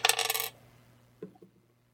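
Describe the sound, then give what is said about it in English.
Dice are rolled for a mind roll, clattering briefly across a hard tabletop in a quick rattling burst, then one small knock as they settle. The sound is fairly quiet, with no voices. “So first off, though, I want everyone to give me a mind roll.”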